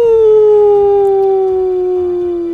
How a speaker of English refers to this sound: What was that? It's a wolf. A wolf, yes.